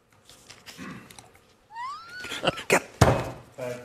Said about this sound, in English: Punches his desk. He's so angry.